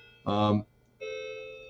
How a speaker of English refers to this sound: Okay, anyway, I just heard the alarm clock, or the chiming clock, and it kind of threw me for a loop.